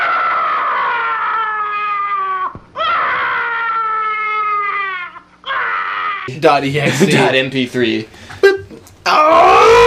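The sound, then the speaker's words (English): A stock film scream: the same recorded man's anguished scream repeats three times, each one loud and falling in pitch, then gives way to a noisy, chaotic burst of rough shouting and commotion before another cry starts. “And that person does the same scream. It's like the same stuff. It's like man_scream .exe.”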